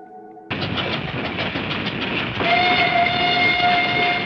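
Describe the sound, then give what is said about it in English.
A train during the Korean War, loaded with war wearies going back for salvage and with supplies for the front, rumbles along the rails in a steady, dense roar, growing louder partway through as a long sustained whistle tone rises above the clatter. No voices. “Trains loaded with war wearies going back for salvage.”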